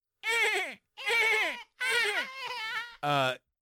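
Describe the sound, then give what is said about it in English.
Someone imitates a dolphin with five loud, high, squeaky vocal squeals, most sliding downward in pitch, separated by brief gaps; the final squeal is shorter and more nasal. “Can you make a dolphin sound?”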